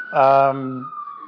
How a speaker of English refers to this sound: the sounds of New York. But this is just a little bit much. I mean, I I'm going to forge along because it seems like I could be here all night with that ambulance.